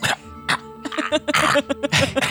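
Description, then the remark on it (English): A person imitates a cat hacking up a hairball, making a series of harsh, throaty retching and coughing bursts that build in rapid succession, close and fairly loud. “Cough up a hairball and...”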